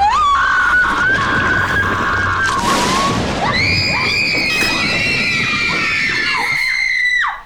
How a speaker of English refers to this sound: I love unified girl screaming. They like match their pitch. It's amazing.